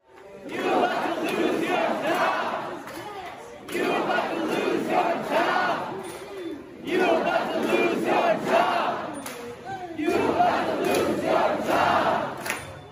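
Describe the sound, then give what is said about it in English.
A large crowd of rioters who have taken over Seattle City Hall chants and yells at the mayor in loud, rhythmic bursts, with four surging phrases separated by brief dips, voices blending into a dense, continuous roar. “So they've taken over there and they're yelling this at the mayor, liberal mayor, you're about to lose your job.”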